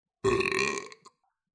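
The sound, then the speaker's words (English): A single loud, long burp from a young dragon lying on the floor after eating, deep and rumbling, lasting under a second before trailing off with a small gulping tail; it stands alone with no talking. “She lay down on the floor and gave a big happy burp.”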